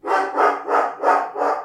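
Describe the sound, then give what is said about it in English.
A dog, Bingo, barks five times at someone outside on the property, in a quick, steady rhythm, loud, each rough bark running almost into the next with no other sounds around it. “Why are the dog barking? Because there's someone outside and this is his property.”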